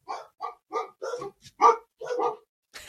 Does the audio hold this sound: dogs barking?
yes